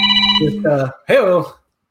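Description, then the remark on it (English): A phone rings with a short, steady electronic tone, fairly loud, then a voice speaks over it briefly before everything cuts to silence. “Who's calling me? Yeah, boom, boom. Phone on silent.”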